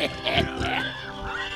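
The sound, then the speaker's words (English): A run of pig-like grunts and squealing oinks from pigs in a sty, fairly loud, with rising and falling squeals. It may be a human voice imitating pigs. “But the only job that was open to him was feeding some pigs in their sty.”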